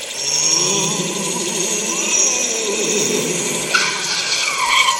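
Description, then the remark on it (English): A new red Bugatti sports car's tires screech on a highway late at night in a long, sustained high-pitched squeal over a roaring engine, the pitch shifting sharply near the end as the skid continues loudly for several seconds. “Having me riding a kite trail this new red Bugatti, is this really the way to stay unnoticed?”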